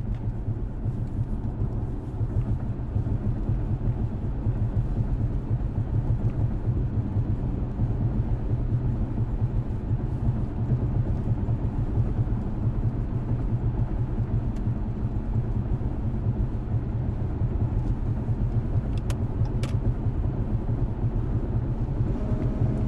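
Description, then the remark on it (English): A car engine roars steadily along with heavy road rumble, heard from inside the vehicle as it speeds up to pass two trucks, loud and continuous with no voices. “I don't know if you heard that, but I done fucking sped up like a crazy bitch.”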